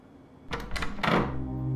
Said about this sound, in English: The doors swing wide with the softest of pushes. They're unlocked as only a fool might seek uninvited entry to this place.